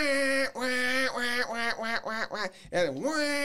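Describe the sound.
A loud high ball duck call, blown to get the attention of ducks: one long drawn-out quack, then a quick run of about six shorter raspy quacks, ending in a wavering final note. No talking over it.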